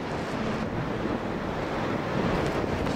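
Strong gusty wind on the rim of a volcano above its crater lake roars and buffets the microphone continuously, a dense, rumbling rush with slight surges, loud, with no voices.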